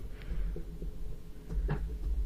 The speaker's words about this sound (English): He's closing his door. Yeah, can't have the roommates listening in.